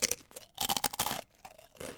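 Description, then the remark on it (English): Crisp crostini crackling as it is bitten and chewed: a run of loud, dry, irregular crunching bursts with brief pauses between them, with no voices. “Ah, the crackle of a crostini. That's very loud.”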